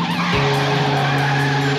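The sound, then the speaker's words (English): A car driven by Din Bowman at high speed around an obstacle course: its tires squeal in a sustained, loud skid over a steady engine roar, the shrill screech holding for nearly two seconds with no voices. “That's Din Bowman driving a car at high speeds around an obstacle course.”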